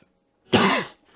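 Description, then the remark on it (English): A single sneeze: one loud, breathy burst lasting under half a second with a falling vocal tone, set against near silence and no talking. “Bless you.”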